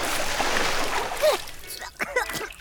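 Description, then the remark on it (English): A big cannonball splash into a swimming pool, a loud burst of churning water that lasts about a second before washing out, followed by people talking. “Okay, I think I just swallowed about a gallon of pool water.”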